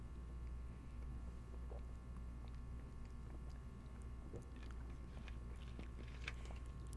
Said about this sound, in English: I'm going to drink my sody. Hopefully it's not too loud. I don't want to hear any sips.